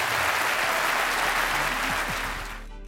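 Audience applause: a dense, steady wash of many hands clapping at once, loud throughout and tapering off slightly at the end, with a few faint voices mixed underneath.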